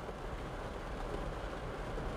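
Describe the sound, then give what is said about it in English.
Rain in San Diego drums steadily on a car's roof and windows, heard from inside the car, a dense, even patter blending into a soft, constant hiss with no pauses and no voices. “I am sitting in my car in San Diego in the rain, I hope you can hear it.”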